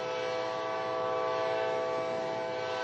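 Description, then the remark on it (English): A train whistle blows in one long, steady blast, loud and sustained for the whole stretch, its layered tones holding level without pause and no voices over it. “I want you to hear me, not that train whistle.”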